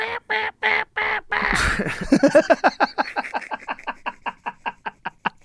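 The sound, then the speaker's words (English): A voice imitates a bird call: a few loud, drawn-out duck-like quacks, then a quickening run of short, clipped quacks that trails off without any talking. “That was a good bird.”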